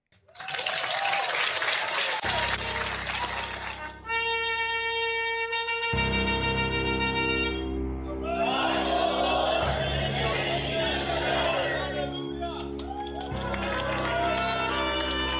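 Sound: crowd yelling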